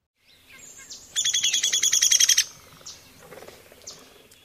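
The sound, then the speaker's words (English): A downy woodpecker's whinny call: a rapid run of about a dozen sharp, high notes lasting just over a second, loud, with faint birdsong in the background. “So let's listen to the comparison one more time. First is the downy.”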